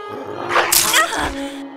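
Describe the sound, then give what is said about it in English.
A dog attacking and biting: a short, harsh burst of snarling and yelping that flares up and fades within a second or so, over a faint steady background hum. “You just saw me get bitten by a freaking dog!”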